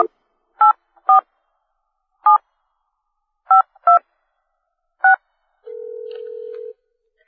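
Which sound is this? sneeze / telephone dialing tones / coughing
telephone dialing tones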